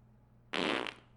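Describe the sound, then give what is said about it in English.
A single loud, blaring fart lasting about half a second, standing alone over a faint low background hum with no talking. “I also like how it ends on a fart joke.”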